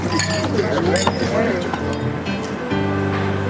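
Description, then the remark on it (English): A few bright glass clinks ring out against a steady bed of background noise and murmuring voices, like a toast. “Cheers.”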